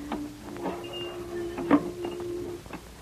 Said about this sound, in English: Now, just let me open this car trunk.